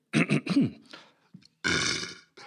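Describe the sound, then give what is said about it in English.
A man belches out a short series of loud, croaking burps, the first few quick and word-like as he belches country names such as India and Rhodesia, followed by a pause and then a longer, rasping belch. “he is also able to belch the names of all the countries of the world.”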